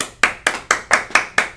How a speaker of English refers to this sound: We should have a soundboard. So you press a button and it goes like clapping or like applaud.